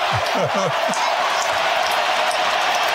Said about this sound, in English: Crowd in a frenzy. Everybody's on their feet cheering.